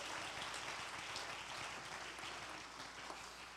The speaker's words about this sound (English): Come on, I think you all ought to jump to your feet and clap your hands and shout, thank God for the fruit. Thank God for the fruit.